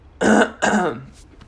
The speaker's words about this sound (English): Excuse my coughing. I'm still pretty sick.